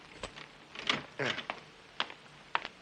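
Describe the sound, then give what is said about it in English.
A locked door is unlocked and opened: several sharp metallic clicks and rattles spaced irregularly, with a brief creaking scrape in the middle, moderately loud. “Door's still locked. Yeah. Open it up”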